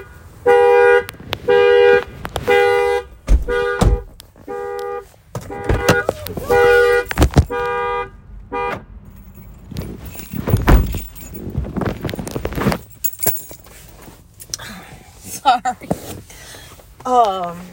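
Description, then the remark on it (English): A car is unlocked with a burst of short, loud horn chirps, followed by jingling keys and the dull thunk of a door being opened and shut. “I opened my car.”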